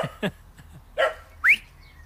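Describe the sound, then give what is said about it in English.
A female dog barks several times in quick, uneven succession, short sharp yaps with a higher yelping bark at the end, loud against a quiet background in the countryside. “You've got to be alert, just like that dog.”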